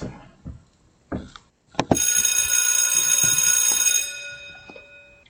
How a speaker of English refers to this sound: All right. Now, when you hear the bell, you know what time it is, right?